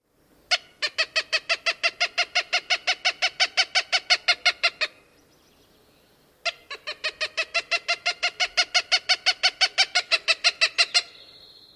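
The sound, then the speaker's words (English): A Cooper's hawk gives two long, steady runs of harsh, nasal kek-kek-kek calls, each about twenty notes, loud, separated by a brief pause, with no one talking. The call is more nasal and lower in pitch than a northern flicker rattle. “And here is the Cooper's hawk.”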